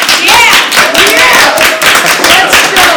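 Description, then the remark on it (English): Loud, steady audience applause given as a vote by those who don't care who wins a game between Jesuit and Christian Brothers, dense overlapping clapping for about three seconds, scattered cheers and voices rising through it. “By applause, how many of you really don't care either way?”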